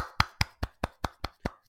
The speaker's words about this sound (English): Little applause. Thank you. That was very nice.